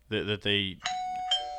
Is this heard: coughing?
no